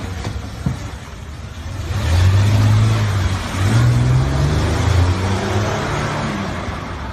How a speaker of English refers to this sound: She has just returned to smash my vehicle. She knocked my vehicle into my neighbor's vehicle, and now she is reversing.